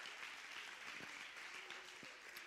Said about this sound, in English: Clap your hands if you believe what I'm preaching right now.